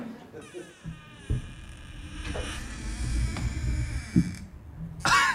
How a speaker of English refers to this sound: That was a creaky door sound effect.